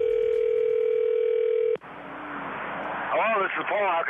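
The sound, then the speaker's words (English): A steady, loud telephone dial tone hums for under two seconds, then cuts off abruptly into line hiss, followed by a voice beginning to talk, at the start of a prank phone call. “Let's listen into today's phone tap.”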